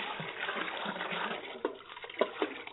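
Water sloshes and splashes as men pour it from buckets over a sacrifice on an altar, in a steady, broad rush, with a few louder splats near the end. No voices are heard.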